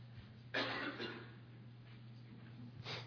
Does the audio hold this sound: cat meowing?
no